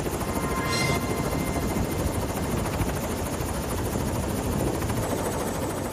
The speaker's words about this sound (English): As a helicopter gets ready to lift off near the Helico Sonoma hangar,